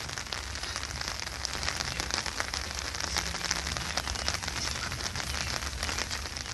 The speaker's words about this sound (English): It's raining there, too. It's raining in North Carolina. That's what you hear.